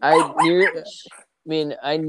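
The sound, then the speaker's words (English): A dog barks in a few loud, harmonic bursts, grouped into two clusters separated by a short pause. “My doggy heard your doggy.”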